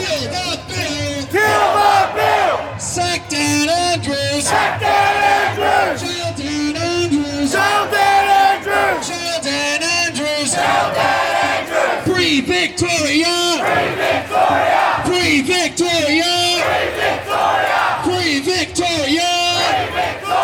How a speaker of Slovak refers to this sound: Dáv sprevádzaný políciou pochodoval mestom a požadoval zrušenie kontroverzného pandemického zákona, prepustenie premiéra Daniela Andrewsa, ktorého zároveň, ako doslova kričal dáv, treba dať do väzenia, čím sa, citujem, oslobodí Viktória.